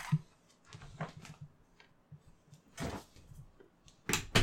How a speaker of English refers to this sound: Better shut this door. The kids are about to freaking rain hell on the house. Close it.